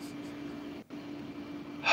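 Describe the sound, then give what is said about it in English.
A quiet, drawn-out inhale, a slow airy breath in over a low steady hum, with a brief pause and then a sharper rush of air at the end. “So I'm going to take a breath.”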